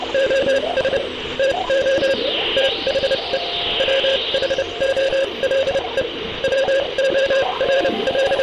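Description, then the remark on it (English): Morse code beeps keyed over a noisy radio channel, short and long tones pulsing in irregular bursts amid constant hiss, crackle and wavering whistling sweeps: a Morse code message picked up from space on 28 November 1960, reading SOS to the whole world. Moderately loud, with no voices. “On the 28th of November, 1960, still 4 months before Yuri Gagarin's mission, the brothers honed in on a Morse code message from space.”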